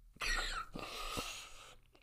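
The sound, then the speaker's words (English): Three harsh, breathy coughs in quick succession, fairly loud, with no talking around them. “Just getting all sorts of coughing in my ears.”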